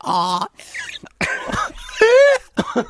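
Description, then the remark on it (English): A person imitates a scared donkey's bray with a run of loud, strained vocal bursts, harsh breathy honks alternating with higher rising squeals, in several choppy segments over about three seconds. “That was another version that of the donkey.”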